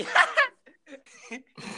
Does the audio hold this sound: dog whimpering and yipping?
yes